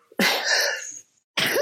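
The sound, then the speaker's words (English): A loud sneeze bursts out sharply, followed after a brief pause by the start of a second forceful sneeze. “Bless you. Excuse me.”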